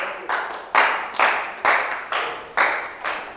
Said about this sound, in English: When someone is clapping, I think it's a good thing to join the clapping. Oh, and I think you have to clap for our instrumentalists.